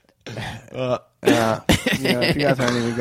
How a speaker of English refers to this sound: If you guys aren't even going to listen to my coughing, just thinking about it.